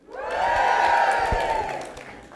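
A crowd lets out a loud, sustained cheer, a wash of many voices whooping and yelling together that swells quickly, holds for about two seconds, then begins to fade.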